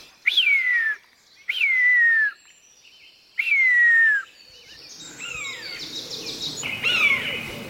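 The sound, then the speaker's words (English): A jay mimics a buzzard: three loud, drawn-out, downward-sliding mewing calls with short pauses between, then softer mixed bird chatter and one more fainter mewing note. “It's not a buzzard, is it? It isn't. It's a jay doing a buzzard.”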